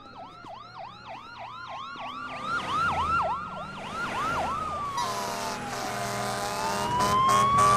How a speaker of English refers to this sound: Alarms start going off.